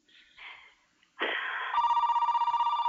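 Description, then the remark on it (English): After a few faint rustles and a sudden burst of noise, a loud telephone bell rings for a caller to a live radio show, with a rapid, buzzing trill that holds steady to the end. “I think we're saved by the bell. Hello there, caller. You're on the air.”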